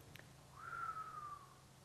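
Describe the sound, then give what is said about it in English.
A single soft whistle through the teeth in dismay, held for about a second and drifting slightly downward in pitch, heard alone and fairly quiet. “Or just whistle through their teeth or a small, a little.”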